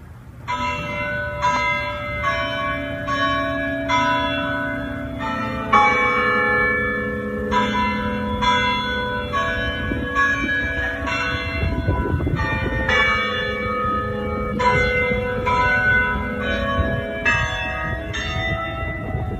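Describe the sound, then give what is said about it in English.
Church bells of the Fountain Street Church in downtown Grand Rapids, converted to chime, ring out the hymn tune "We Shall Overcome", one struck note after another in a measured rhythm, with long ringing overtones blending together. Loud and full, with no voices. “The bells you heard are from the Fountain Street Church in downtown Grand Rapids, who recently converted their bells to chime, "We Shall Overcome."”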